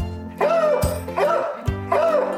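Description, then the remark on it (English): A bluetick coonhound gives three loud, drawn-out baying barks in a steady rhythm, each a deep, resonant howl-like bark, with no one talking. “Definitely not an apartment dog. You would have the police coming over, I think, a lot.”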